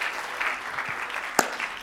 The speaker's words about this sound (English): Will you clap your hands one more time unto the Lord as you are seated today?